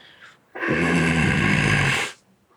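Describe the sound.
A person growls in imitation, a single loud, rough, rumbling snarl lasting about a second and a half, low and gravelly with a raspy edge, standing alone without any talk.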